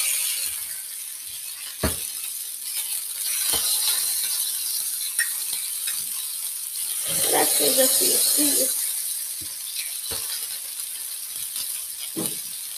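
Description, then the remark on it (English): A spatula presses and scrapes burger patties flat on a hot griddle to make smash burgers, with a few sharp metallic knocks at irregular intervals over a constant loud sizzle. “Smashing these all down as the name suggests. Smash burgers.”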